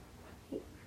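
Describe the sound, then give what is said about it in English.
A dog lets out one short, high yelp of pain after its foot is stepped on by accident, a quick whimper over a quiet background with no talking. “My mom stepped on my dog's foot by accident.”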